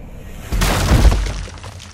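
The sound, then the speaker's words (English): A wooden umpire chair smashes apart as a body is hurled into it, one loud crash, splintering and clattering for about a second before the noise fades out, with no voices. “You hurl the body at the umpire chair, smashing it and the chief immensely.”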